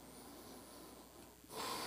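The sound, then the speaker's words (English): Soft, airy breathing during a Buddhist meditation breathing practice, with a gentle hiss of air swelling into a fuller breath near the end. No one speaks. “Now, beginning, as always, with breathing.”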